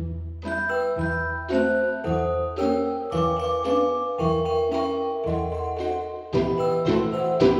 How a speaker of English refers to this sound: And now you know, that's the sound of a celesta.